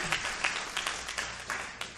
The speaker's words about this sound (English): Amen. You don't have to clap.